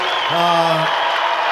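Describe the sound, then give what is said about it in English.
An audience in Seattle applauds two teachers in a steady, dense wash of clapping that lasts throughout, with a brief voice calling out over it early on. “And we have two special teachers that my kids brought tonight, and I wanted to allow them some notoriety and some applause and some recognition from all you, their fine group of neighbors here in Seattle.”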